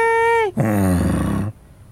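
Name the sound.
donkey braying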